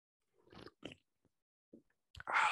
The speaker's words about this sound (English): Mate, it's a VB. It's an apple cider. You need to do a slurp for the microphone now. All right, ready?